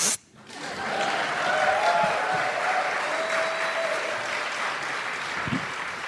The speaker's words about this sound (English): But please, a round of applause for...